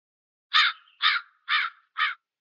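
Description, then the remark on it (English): Four harsh, raspy crow caws in steady succession, each loud, with short silent gaps between them and no other sounds around. “Yes. Crows. Very scary.”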